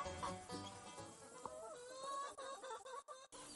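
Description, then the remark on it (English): A flock of chickens clucks and chatters outdoors in a field of fresh pasture they have just been moved to, many overlapping calls forming a busy, continuous murmur, with no one speaking. “And the birds have a completely fresh salad bar now for the next couple, 3 days.”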